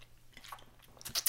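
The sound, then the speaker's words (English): Crisp crunching as a dog chews crunchy treats, with scattered bites that grow louder and denser near the end. No one speaks. “I mean, he likes meaty meats too, but he loves some good crunchies.”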